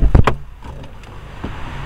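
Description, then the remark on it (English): Two quick, heavy thumps close together, like a car door opening as a person steps out of a parked car, followed by a quiet interior hush and a softer clunk shortly after. “Stepping out of the car.”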